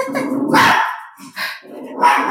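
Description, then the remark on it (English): The speaker's dog barks loudly several times in quick, irregular bursts, with a voice speaking underneath. “Because, sorry, my dog is just...”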